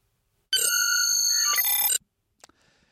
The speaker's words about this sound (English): Rob Legato, you know what, buddy? You're getting some props, and your props are a transporter beep.